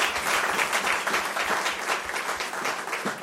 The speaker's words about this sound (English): Such a beautiful song service. Amen. A round of applause to the Lord.